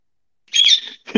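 A pet bird lets out a harsh, raspy squawk, followed a moment later by the start of a second loud screech. No one speaks.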